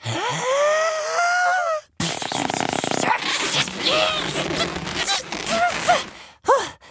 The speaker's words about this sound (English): Just for that, I will make you the most special balloon creation ever!